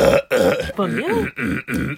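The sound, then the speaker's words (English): A voice imitates throat clearing with a string of loud, raspy vocal bursts, roughly five in quick succession with brief gaps, one rising and falling in pitch like a gurgling hum, mimicking a person who is always clearing mucus from their throat. “Mucus, but I you ever be around a motherfucker who always clearing their throat?”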